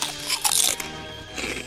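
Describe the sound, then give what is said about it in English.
Crisp crunching as someone bites into Defco's Black Legumes, a crunchy, crispy black legume snack, with a loud burst of chewing near the start and a softer crunch near the end, no talking. “Become a real creature and munch our black legumes.”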